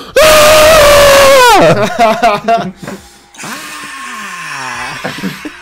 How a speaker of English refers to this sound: He raps about how he wants to off himself, but the scream is just so... The scream by itself is hilarious. It is really funny.